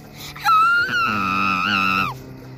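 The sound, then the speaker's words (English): A girl's high-pitched scream of horror, loud and sustained for about a second and a half at a steady pitch, swelling slightly before dropping off, with no talking. “The young girl screamed out in horror. Scream.”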